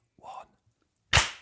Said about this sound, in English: Just 3, 2. The one is silent, then you clap. Right. Yeah, yeah. So please join in if you're listening at home. 3, 2.